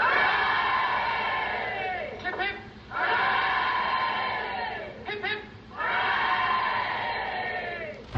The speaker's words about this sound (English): The chips of Brookfield. School. Three cheers for chips. Hip, hip.